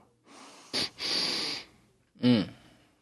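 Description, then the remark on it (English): A quick, sharp sniff followed by a longer drawn-in inhale through the nose, smelling a glass of bourbon, then a short appreciative hum. “So let's give it that sniff.”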